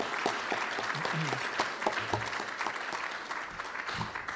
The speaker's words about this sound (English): Please join me in giving a round of applause to those fine citizens that are helping us out here.